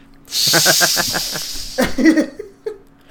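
Cats fighting: a loud, sustained hiss over rapid pulsing growls, followed by a few short, ragged yowls.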